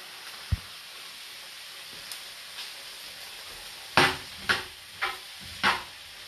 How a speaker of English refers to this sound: So now the onions are sizzling away, which is great.